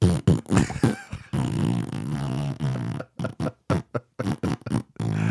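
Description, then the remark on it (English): A voice makes a long, buzzing mouth imitation of farting, followed by a string of short sputtering blurts in quick bursts, fairly loud. “Could you imagine him flying through the sky? It's farting.”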